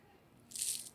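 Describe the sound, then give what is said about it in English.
A single crisp, hissy burst of a knife chopping scallions with a hard vertical motion, the incorrect way to slice them, bright and high-pitched, rising out of quiet about halfway through and fading after a moment. “So you hear that hard chopping, that vertical motion.”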